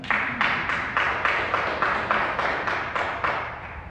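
An audience claps together in a steady, even rhythm, roughly three claps a second, each burst bright and full over a continuous crowd murmur, with no one speaking.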